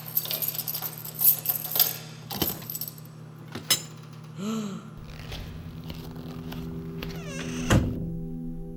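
Keys taken from a pocket jingle and clatter, followed by a few sharp metallic clicks and thunks of a lock turning and an apartment door being worked open, with a low steady hum underneath.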